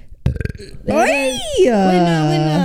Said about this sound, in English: Oh, I feel like I got a burp, guys. Sorry.